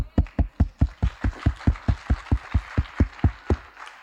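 One person clapping steadily, about seventeen sharp, even claps in quick succession at a brisk, regular pace, loud and alone with no talking.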